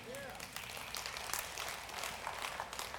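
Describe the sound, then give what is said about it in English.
An audience at a sermon on grace claps together, a dense, steady wash of many hands patting at once, holding an even loudness for the full few seconds with no voice rising above it. “But we, yeah, you can clap for that.”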